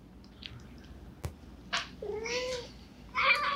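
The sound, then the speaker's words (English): A cat meows as it climbs, a drawn-out wavering cry followed by a shorter, louder yowl, with a sharp click and faint rustling. “This is not supposed to be a cat video.”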